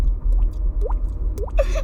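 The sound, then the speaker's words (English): A mouth imitates dripping water: a few quick, hollow plops, each rising sharply in pitch, spaced unevenly over about two seconds against a low background hum. “I can make the water drop noise.”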